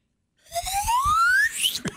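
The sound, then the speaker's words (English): A Chick-fil-A drinking straw being blown, giving a reedy, whistling tone that glides steadily upward in pitch for about a second, with a faint buzzy rattle underneath, ending in a brief higher squeak. “I can blow a straw.”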